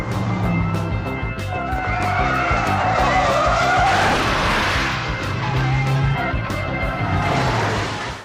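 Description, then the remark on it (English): A movie car chase scene: cars skid and screech with tires squealing over roaring engines, a loud, continuous chase-scene din with sharp repeated impacts running throughout, no voices. “I'm sure y'all know what that scene is. It's from the Blues Brothers, of course. Cars and movies just go together”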